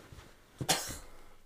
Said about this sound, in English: Coughing on phones. Behind closed doors. The tongue out cough. You're naturally good at that